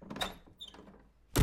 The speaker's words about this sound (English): Wait? Oh, the main door just opened. Who is it? I can't see who's coming in from here.